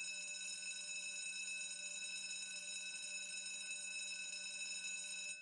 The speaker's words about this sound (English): All right, I know that's the bell. Just remember, I dismiss you, not a bell.